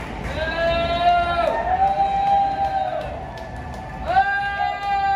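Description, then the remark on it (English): A crowd boos in long, sustained, droning swells, one stretched over the first few seconds and another rising near the end, loud and steady over background crowd noise. “Somebody's booing.”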